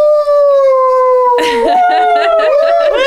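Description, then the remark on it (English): A dog lets out a long, steady howl that rises into a louder, wavering chorus partway through, the pitch bending up and down with rough, breathy edges. Clear, no talking. “Oh, that's a dirty dog right there.”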